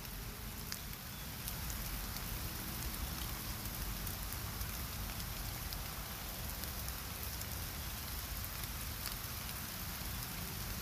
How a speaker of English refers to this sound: Can you hear the raindrops?